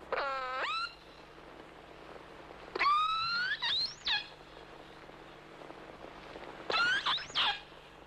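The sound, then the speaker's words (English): Killer whale calls recorded underwater: three bursts of high, squealing, harmonic whistles with rising and falling pitch, spaced a few seconds apart over a low, steady hydrophone hum. “to sit on the ice edge as, for instance, killer whales pass by and record their sounds, their feeding activities and whatnot.”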